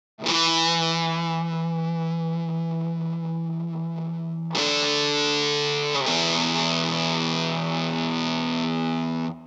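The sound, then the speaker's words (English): Heavily fuzzed electric guitar with a Bakelite carousel volume knob rings out in thick, buzzing sustained chords, changing twice, loud with no talking over it. “You know what it needs? It needs some fuzz.”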